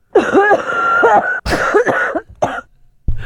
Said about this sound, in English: It happens. I miss those. I miss those coughing fits. Yeah, you know, some days you get up and you got that.